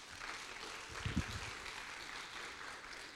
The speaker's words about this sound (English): Our worship team does such a phenomenal job. Can you give them a great round of applause?